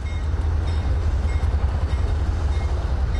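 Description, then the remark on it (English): A steady, heavy rumble of rail cars rolling past at a rail yard in Commerce, with a deep low-end drone and faint metallic texture, continuous throughout and no voices. “Angelo Logan stands at a rail yard fence in Commerce.”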